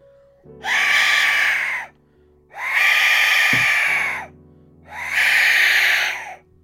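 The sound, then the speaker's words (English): An Aztec death whistle is blown three times, each blast a loud, harsh, breathy shriek lasting over a second, like a scream, with short pauses between them and no talking. “Right, here's the Aztec death whistle.”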